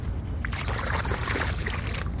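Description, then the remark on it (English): Water is poured back in a steady, continuous splashing rush that lasts about two seconds, fairly loud and unbroken, with no voices over it. “So let's put this water back in.”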